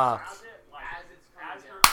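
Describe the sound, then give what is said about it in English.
A hand slaps a laptop trackpad once, a sharp smack near the end that follows stretches of talking. “So I'll be, like, sitting there just, like, slapping at my trackpad.”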